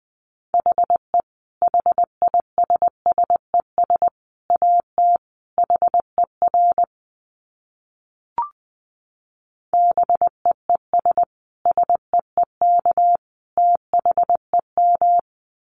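A steady, mid-pitched Morse code tone keys out a brisk run of dots and dashes at 20 words per minute in clipped groups, pauses briefly for a few seconds, then resumes its rapid rhythmic sending. No one speaks.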